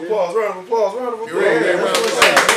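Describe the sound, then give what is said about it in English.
Excited voices give way to a short burst of applause, a few sharp hand claps in quick succession at the end, loud and overlapping the chatter. “Round of applause.”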